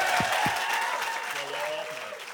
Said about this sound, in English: And a big round of applause for Donal Gleeson.